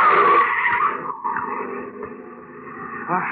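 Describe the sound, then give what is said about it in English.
A car skids loudly with a long, screeching tire squeal that sustains for about three seconds, ending abruptly as the vehicle comes to a halt. “Look out, Governor. Mind that car.”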